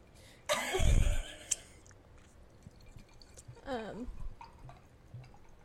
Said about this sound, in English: I also lost Black Girl Magic, so I put ice cubes in my glass because I lost the bottle.